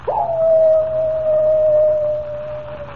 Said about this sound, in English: Does the howl of the coyote really spell death for Comanche Joe?